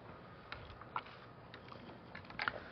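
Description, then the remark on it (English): Faint, papery rustles of Bible pages being turned as people look up Revelation 19, a few brief crisp flicks scattered irregularly over a quiet background, with no talking. “I still hear pages flipping.”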